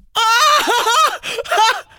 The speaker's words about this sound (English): What kind of scream are we talking about? It's difficult to imagine what scream you wanna, do. Hang on, let me move my mic back. Yeah. It was like this.